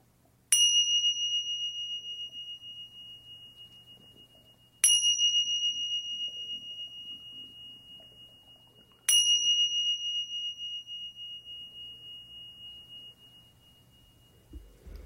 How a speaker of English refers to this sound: And the meditation will begin with the three bells.